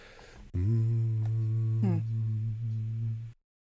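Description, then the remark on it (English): A person hums a single-word mantra as one long, low, steady tone for about three seconds during a mantra-based meditation, with a brief pitch waver midway before it cuts off into silence. “He's saying one word, and it's more of just like a hum.”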